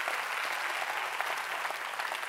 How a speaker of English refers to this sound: Why don't we give a big Jesus clap offering to him? Wow!